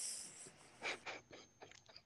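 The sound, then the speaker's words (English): A quick run of soft, breathy coughs, about five short bursts in an uneven sequence, fairly quiet, with no talking around them. “It's not funny. I'm coughing.”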